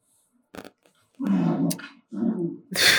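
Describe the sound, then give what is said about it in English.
A dog makes playful noises while trying to play: two drawn-out throaty growls with short sharp snorts or yips between them, no voices, lasting only a few seconds. “Is your dog okay? He's trying to play with”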